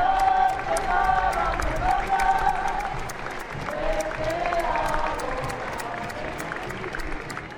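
Loud, sustained applause from a large parade crowd as the New Zealand Returned Services march by, dense clapping with scattered cheers and whoops rising above it, continuing steadily throughout without a break.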